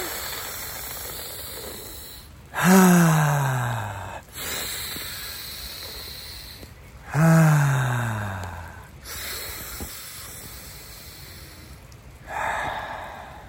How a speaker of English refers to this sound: Let's do some breathing.